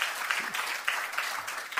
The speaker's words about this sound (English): And I would encourage every single person, yeah, we can clap for that. That's okay. We can clap for that.